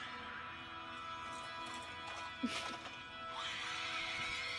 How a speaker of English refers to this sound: They're like loud and like, yeah, honky almost. I just think of like a screaming deer. It's similar to an elk.